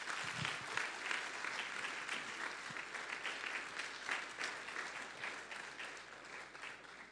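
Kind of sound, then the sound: crowd, round of applause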